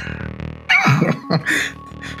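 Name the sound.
voice imitating a sneeze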